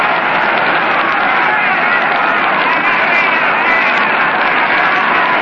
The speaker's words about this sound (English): First pitch to Red is in there, a foul strike, belt high. It brought forth a roar from the crowd.